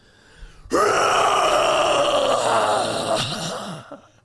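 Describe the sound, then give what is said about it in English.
A person's voice imitates a lion's roar: one long, loud, strained groaning growl that starts abruptly, holds for about three seconds with a rough, gravelly edge, then trails off. “Give me your roar.”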